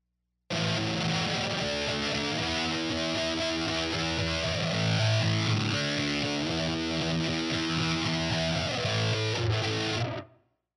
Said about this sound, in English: So let's give a listen to our reverb, Big Muff, Plumes, and the flanger together.